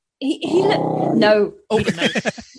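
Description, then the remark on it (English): A young, small Pomeranian Jack Russell cross dog growls in a sustained, rumbling stretch lasting over a second, fairly loud, followed by a brief burst of a person speaking. “And that's him growling.”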